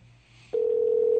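A low hum gives way to a loud, steady electronic phone tone that sustains unbroken, like a ringback or dial tone heard over a telephone line, with no voices.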